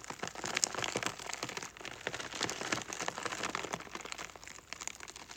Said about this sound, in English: That sounded all like drops on a tent. Yeah, it did. Yeah. So what was it? Just iceberg lettuce. So what I'm doing is I'm just pressing down and rolling the lettuce on the table.